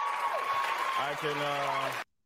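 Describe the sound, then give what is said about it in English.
A crowd applauds loudly with dense, steady clapping while voices roar and cheer over it, then the noise cuts off abruptly after about two seconds. “I don't know what the applause, the roaring.”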